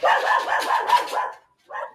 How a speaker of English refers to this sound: Okay, we're going to pause it for a second while they bark. I feel like we're doing good. Okay, so sorry. Our dogs were, like, they're wild, and somebody came, and they started barking, and we were sitting outside.